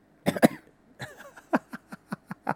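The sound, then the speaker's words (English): Two sharp coughs come first, followed by a run of smaller, evenly spaced coughs and throat-clearing bursts, moderately loud, with no talking. “Now, did this... pick up that cough.”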